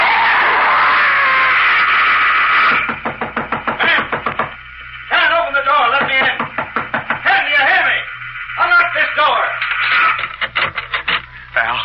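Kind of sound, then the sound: impact, knocking on a door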